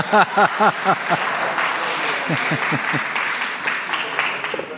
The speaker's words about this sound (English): This is the word of the Lord. Yeah, you can clap for him reading through that.